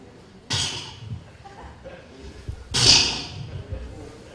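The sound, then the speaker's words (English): A man imitates a horse snorting twice, illustrating how Jesus groaned at the tomb of Lazarus: two sharp, breathy blasts of air, the second louder and longer, each fading into a rough, noisy exhale. “He made the sounds like the snorting of a horse.”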